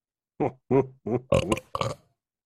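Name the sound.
burp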